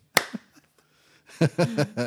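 A slow round of applause: one sharp, loud hand clap rings out, followed by a much softer second clap, then a pause before voices start talking and laughing.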